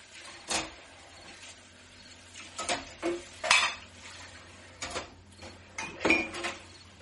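household object, dishes and cutlery clattering

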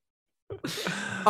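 human body sound, throat clearing

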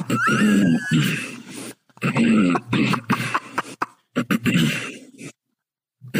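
human body sound, repeated coughing

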